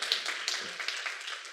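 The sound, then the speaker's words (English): A short burst of soft clapping from several people, a dense patter of quick, crisp claps that stays fairly quiet and even throughout, with no voices. “Yes, that's good news worth clapping about.”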